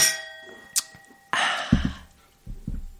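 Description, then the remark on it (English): Glasses of frozen mango daiquiris clink together in a toast, leaving a bright ringing tone that slowly fades. A small tap follows, then a breathy rush of noise and a few soft low thumps. No one speaks. “No, we made frozen mango daiquiris and they are delightful. Cheers, girl. Cheers.”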